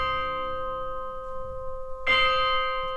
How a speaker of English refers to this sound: And the movement is set at midnight in a graveyard. So we've got all these spooky sounds that the composer is incorporating. We've got bells tolling.